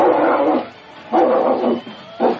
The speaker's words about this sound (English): Listen to that cur.